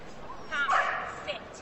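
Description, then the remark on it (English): A border collie at an agility obstacle course lets out a short burst of excited barks and yips, followed by one more quick yip, with a murmur of background voices underneath. “Handled by Jennifer Crank from Pickerington, yeah, border collie.”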